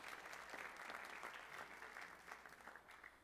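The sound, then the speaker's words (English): A crowd of people applauding together, a dense, steady wash of many hands clapping at once, sustained and fairly loud throughout with no voices standing out; an audience at a worship service giving Jesus a hand clap of praise. “Can we give Jesus a hand clap of praise as we enter into his word?”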